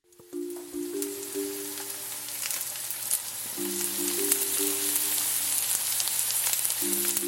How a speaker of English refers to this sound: That to me sounds like someone sizzling something. Like in a pan? Yes, yes. Yes, 100% right. Good job. That was something being fried or cooked in a skillet.